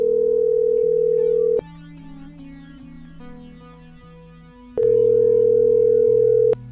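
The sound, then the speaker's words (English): An outgoing call's ringback tone: two loud, steady electronic tones separated by a few seconds of silence, repeating in a slow on-off pattern, with faint music continuing underneath. “We're going to call this motherfucker lots.”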